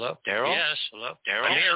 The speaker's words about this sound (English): Uh-oh. We're getting an echo. Someone's got their mic open. We're still getting an echo.